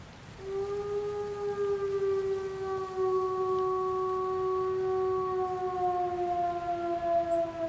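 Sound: wolf howling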